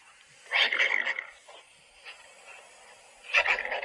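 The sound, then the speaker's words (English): A wolverine screams in two loud, harsh, raspy bursts about three seconds apart, with a brief faint growl in the quiet gap between them; no one talks. “That's a wolverine. Okay, it sounds like a warthog, first of all.”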